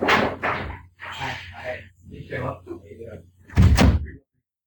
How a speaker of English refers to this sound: The pizza guy just showed up, so he's going to knock on the door here in a second, so I'll be right back.